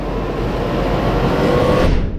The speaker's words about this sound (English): Should this train be going faster?